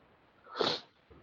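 A single sharp sneeze bursts out, a quick hiss of breath that swells and fades in under half a second, with quiet background before and after.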